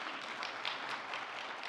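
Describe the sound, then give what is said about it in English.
An audience at a church service applauds for the Lord Jesus Christ, a dense, steady wash of many hands clapping at once with no individual claps standing out, sustained at an even level with no talking. “Let's give applause for our Lord Jesus Christ.”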